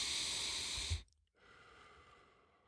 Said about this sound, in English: Let's just calm down right now. Let's just take a couple deep breaths.